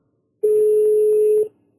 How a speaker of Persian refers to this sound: آره داره زنگ میزنه به رفیقش الان.